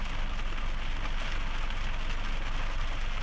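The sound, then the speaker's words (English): Steady rain falls in a continuous, even hiss with a low rumble underneath, uninterrupted, with no voices. “I'm leaving that long that long break. Or is just the rain?”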